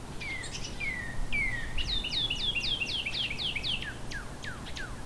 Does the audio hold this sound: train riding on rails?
no